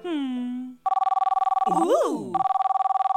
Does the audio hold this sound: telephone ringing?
yes